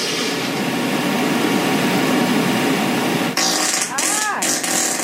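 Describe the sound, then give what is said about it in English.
A very long, steady, buzzy fart drones on for several seconds, then cuts abruptly into a rougher stretch with a few brief wavering, squeaky tones near the end. “But this one, there's an argument whether or not it's the longest fart ever.”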